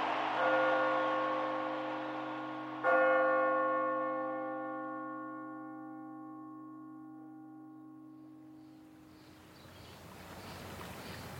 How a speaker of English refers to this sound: The bell at City College, which hadn't been rung in 50 years, rang 7 times, one for each of the tournament victories.